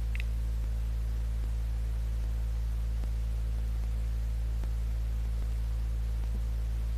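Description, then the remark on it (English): Steady background static hiss with a low electrical hum underneath, constant and unbroken, with faint periodic ticks; no voices. “But there might be more static in the background as a result.”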